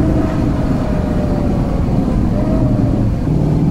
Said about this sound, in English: So now we're in third gear now, so we'll just get it going down there. This is quite a long corner, isn't it? Yeah, so it's the bowl. We're coming through at about 90 kilometres an hour.